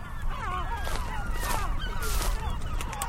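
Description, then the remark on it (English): Great black-backed gulls and herring gulls calling over one another in a continuous, overlapping chorus of wavering, mid-pitched cries, with a steady low rumble of wind or surf underneath. “You're hearing great blackback gulls and herring gulls.”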